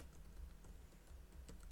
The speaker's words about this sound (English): Yeah, and I want to go to, I'm just typing this out to you guys